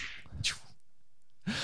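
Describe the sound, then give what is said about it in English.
Two quick whip cracks about a second apart, each a sharp swishing snap, played as a sound effect, heard alone without any talking and at a fairly low volume. “Kitten with a whip. Yes. Meow. Wait, I have a sound effect for that.”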